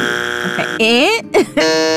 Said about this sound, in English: I need my buzzer. Hold on. Damn it.